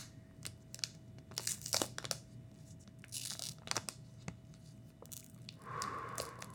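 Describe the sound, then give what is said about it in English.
A Topps 2016 Heritage Baseball (Today's Stars, 1967 design) card pack wrapper is torn open in a series of sharp, crinkly rips and crackles, with bursts of louder tearing amid quieter rustling and a steady low hum underneath. “All right, open it up. Let's hear it. Nice. A nice little feeling on the wrapper.”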